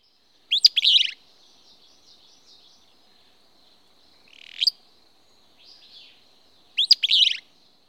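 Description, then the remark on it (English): A song of the desert southwest subspecies of willow flycatcher: two sharp, buzzy burry phrases repeated about six seconds apart, with softer rising call notes between them, clear against a quiet background. “the willow flycatcher has a subspecies with a unique song that lives in the desert southwest”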